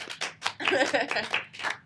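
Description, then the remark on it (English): Scattered hand claps in quick bursts, accompanied by loud whooping and cheering voices, a short, lively round of applause lasting under two seconds. “Round of applause.”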